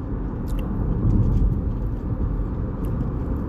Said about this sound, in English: Oh, fuck, and there's so much traffic. I'll be fine.